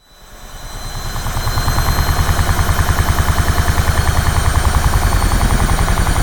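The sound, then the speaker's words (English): A regular household washing machine running loudly, its steady mechanical drone carrying a fast, regular thumping pulse throughout. The sound swells up over the first second, then holds level with no voices. “In this first episode of 5 Minutes of Silence, we'll be listening to my washing machine.”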